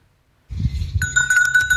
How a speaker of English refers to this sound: Yeah, he's petting a goat. Oh, hi, goats. The goats. Goats. There he is. He's petting a goat. That's the bell we heard.